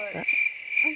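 Crickets chirp in a steady, high-pitched trill that fills the whole second, with brief low murmurs of a voice at the start and near the end.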